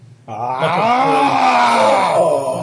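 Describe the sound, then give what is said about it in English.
A voice imitates the roar of a moving monster: one sustained, loud, throaty growl-groan with harmonic rasp that starts abruptly and holds for over two seconds, wavering slightly in pitch. “You hear the thing move, and there's a roar.”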